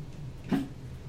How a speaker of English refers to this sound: Lovely dog sounds. I would... Yep. It's my favorite sound.